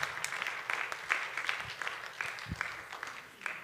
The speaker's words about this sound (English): Everyone, a round of applause.